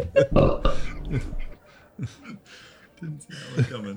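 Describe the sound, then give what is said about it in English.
A loud, drawn-out belch rumbles for about a second and a half, made as a signature belching sound while rating beers, followed by a voice speaking briefly afterward. “Was that a belch?”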